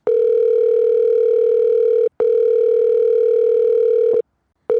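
A telephone ringing tone heard from the caller's end: long, steady electronic buzzes separated by brief pauses, loud, with no voices.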